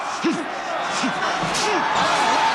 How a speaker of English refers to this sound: Body punches. Hard left and right.